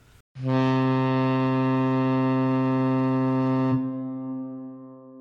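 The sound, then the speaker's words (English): A single deep, loud foghorn blast sounds alone for about three seconds, its rich low drone holding steady before cutting off and leaving a fading reverberant tail. “That's a foghorn.”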